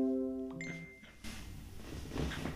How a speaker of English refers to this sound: I said there goes your phone and your laptop at the same time.